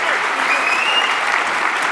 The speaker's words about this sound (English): Gary Vaynerchuk, big round of applause. Thank you, brother. Close this out. See you on the other side. Big round of applause.